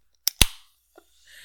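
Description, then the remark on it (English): A drink can cracks open with a sharp double click and pop, a brief hiss trailing off, then a soft steady fizz of carbonation rising near the end. No one speaks. “What a fizz.”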